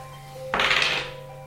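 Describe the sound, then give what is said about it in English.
A single heavy knock on a door, a dull thunk that rings briefly and fades over about half a second, set against a steady low electrical hum with no voices. “He looks at you and knocks on the door.”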